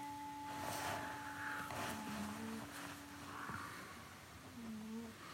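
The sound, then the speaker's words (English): Oreo the cat snores softly in a steady rhythm, with faint raspy breaths about once a second over a quiet background hum and a few low, breathy shakuhachi tones. “Kitty Snoring & Shakuhachi”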